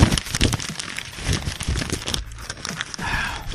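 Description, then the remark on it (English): Paper being crumpled and crinkled, a dense run of dry, crackling rustles that swell and fade irregularly for a few seconds, with no voices. “And the paper I was just crumpling, I was a dumbass and lost it.”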